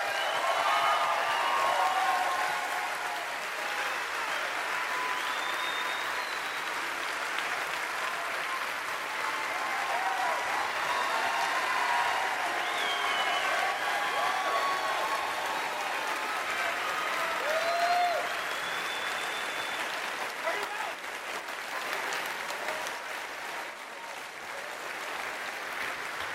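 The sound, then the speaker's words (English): Sustained audience applause, a dense steady patter of many hands clapping at an even level for the whole stretch, with faint scattered calls and voices mixed into the crowd noise. “I appreciate that you will all clap for me continuing to be poor.”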